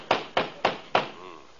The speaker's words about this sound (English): Hey, Kingfish, I think somebody's at the door. Yeah, that certainly is a nasty knock, all right.